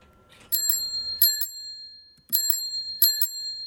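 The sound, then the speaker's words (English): A bicycle bell rings as a warning of an oncoming bike, in quick double dings repeated four times with short pauses between, each bright metallic chime lingering briefly. No one speaks. “Ah, the sweet warning sound of an oncoming bike.”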